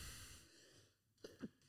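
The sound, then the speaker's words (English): A stifled sneeze, held back by holding the nose, comes out as two short, muffled bursts in quick succession, soft and held back, after a moment of faint breathy hiss, with no one talking. “It was a very silent sneeze.”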